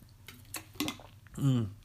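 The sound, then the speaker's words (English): Someone takes a quick sip from a water bottle: a few wet clicks and slurps, then a swallow ending in a short voiced exhale. “Get a sip for my Red Robins here.”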